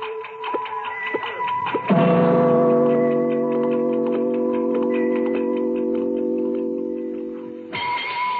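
A clock ticks in a steady, even rhythm, then a loud sustained droning chord swells in over the ticking for several seconds before cutting off, leaving the ticking alone again.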